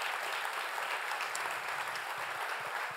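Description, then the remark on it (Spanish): An audience applauds steadily for about three seconds, a dense, even wash of many hands clapping at a fairly quiet level with no voices over it, giving applause as a greeting to the people following by radio and television. “Démosles un aplauso.”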